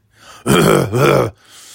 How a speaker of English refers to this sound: Not even 10 seconds in and I'm clearing my throat. Like fucking Gary Delabate.